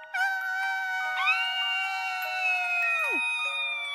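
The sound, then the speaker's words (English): A voice imitates a banshee scream: one long, thin, high-pitched wail that steps up in pitch partway through, holds steady, then slides sharply down and cuts off. Quiet overall. “Our sign off this week, I think, should be a very quiet, because babies are sleeping, a very quiet banshee scream.”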